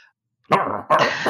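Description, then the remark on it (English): Dogs on the prowl, sent into action after sniffing Katie's sweater, bark loudly, two harsh back-to-back barks following a brief silence, with no voices present. “So next we come back to more action music as we see dogs sniffing Katie's sweater, being sent into action.”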